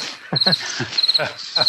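Crickets chirp in short, rapid trills that repeat about three times in quick succession, fairly loud against a quiet background, with no voices.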